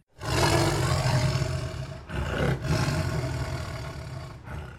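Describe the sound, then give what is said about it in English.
Deep, loud roaring of two approaching saber-toothed tigers, rumbling almost continuously with brief dips before surging again. Harsh, growling and thick with low rumble, with no talking. “Issue Number 2 opens with Morgan still lashed to the branch of a tree as two saber-toothed tigers approach.”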